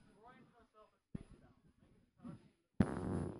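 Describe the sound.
A loud fart blasts into the microphone as a rough, buzzing burst lasting under a second, right after a stretch of people talking.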